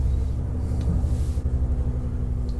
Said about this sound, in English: I think there's a helicopter passing over our house, so I'm just not saying anything, so you can cut that out.